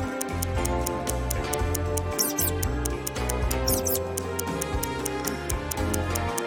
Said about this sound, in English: A mouse squeaks somewhere in the room. Inspect the apartment and help Sadfist catch the rodent.